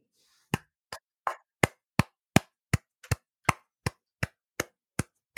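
About fourteen crisp hand claps in a steady, even rhythm, fairly loud, with no talking, like one person applauding slowly for several seconds.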